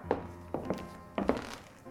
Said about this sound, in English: I'm sorry. I was coming to ask you a question, and I sneezed, and everything fell.